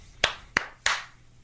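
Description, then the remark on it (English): Four sharp hand claps, a slow clap over the internet celebrating over $900 raised for America's Vet Dogs, spaced slowly and a little unevenly, each with a brief echo, with no talking. “Wait, yeah, I gotta do a slow clap.”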